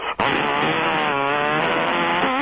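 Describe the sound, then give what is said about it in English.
A voice imitates a jaw harp with a steady, buzzy, twanging drone, its overtones shifting in a wah-like pattern for a couple of seconds. It is loud and continuous, with no talking. “Sometimes I do a little, jaw harp. You hear a little jaw harp there?”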